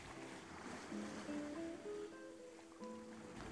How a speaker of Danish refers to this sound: Kvinden lukkede øjnene for bedre at kunne lytte. Hun mærkede længslen, og havet hviskede til hende med sin stille melodi.